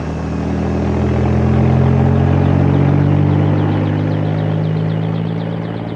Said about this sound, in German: Der Helikopter hob ab.